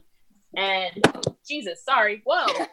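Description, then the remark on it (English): During a live video broadcast, a cat knocks something over, making two sharp clattering thuds that cut through a person's drawn-out, exclaiming voice, which continues around the noise. “My cat just knocked over Wow, live TV, folks.”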